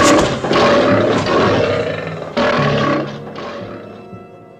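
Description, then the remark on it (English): A lion roars loudly, a deep rumbling growl surging in several heavy bursts before tapering off and fading at the end, with no talking. “that shot of the lion coming down from the bed and jumping over onto the camera”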